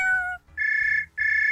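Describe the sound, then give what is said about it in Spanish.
A cat meows in three quick, loud cries: a short first call, then two longer, steady high-pitched meows with a brief gap between them. No one talks. “El gato político. ¡Miau!”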